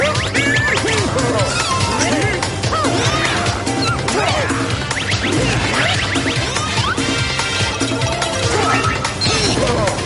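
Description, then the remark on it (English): A loud, chaotic jumble of upbeat video game music from DK Barrel Blast, layered with constant crashing, whacking and whooshing sound effects, dense and busy throughout with no pauses. “That horrifying cacophony is DK Barrel Blast.”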